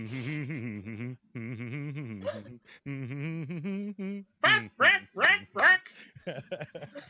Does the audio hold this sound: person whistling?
no